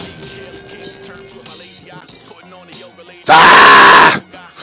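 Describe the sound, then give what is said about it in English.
Background chatter gives way to a sudden, very loud yell straight into the microphone, lasting about a second and blasting out, then cutting back to quieter noise. “Yeah, yeah, my bad. I mean to yell at you guys all the time.”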